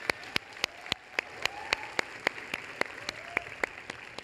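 A church audience applauds its student worship team: a steady wash of clapping with one set of crisp, evenly spaced claps standing out in a quick regular rhythm, held at a moderate level without any talking.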